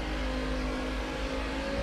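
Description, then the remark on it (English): A motorcycle engine, ridden around a hotel, drones steadily with a low rumble and humming tone, holding a fairly constant loudness for the whole stretch, with no voices over it. “And then there's like a guy on a motorcycle going around this hotel or something.”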